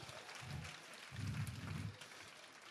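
Audience applause rises as a dense, steady patter of many hands clapping, fairly quiet overall, with two low rumbling swells before it thins out. No one speaks over it.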